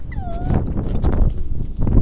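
A puppy lets out a high, thin whimper that slides downward, followed by soft snuffling and shuffling noises against a low, steady background rumble.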